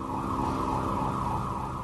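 A police car siren holds a steady, wavering wail throughout, with a low engine-like rumble underneath and no one speaking.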